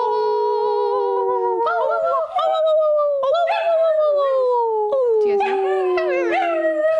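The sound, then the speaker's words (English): Several voices howl together like dogs, long sustained wavering howls that slide downward in pitch, overlapping loudly for several seconds, with a few yips breaking in. “We've been howling.”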